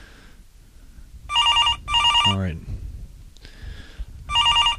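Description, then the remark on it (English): A telephone ringback tone buzzes in short, repeated electronic bursts, fairly loud and steady, as an outgoing call rings unanswered; a man briefly speaks between the rings. “if you're there, please answer your phone.”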